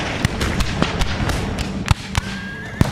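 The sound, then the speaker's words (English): Gunfire explosions crack out from a ravine in an irregular volley, about eight sharp, booming blasts over a rumbling background, with a thin whistling tone rising briefly near the end. “Explosions from the ravine.”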